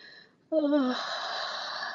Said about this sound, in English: A yawn. A yawn is can be helpful. So it's contagious. So I'm going to yawn.